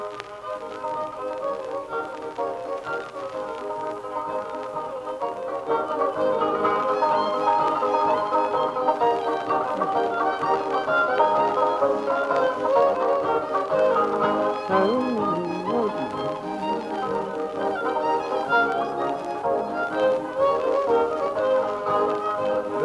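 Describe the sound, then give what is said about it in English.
On a recording from a collection, a small local band plays a lively Irish jig, the melody bright and continuous, growing fuller and louder after the first few seconds and carrying on steadily to the end. “This is a local band playing the Irish Washerwoman”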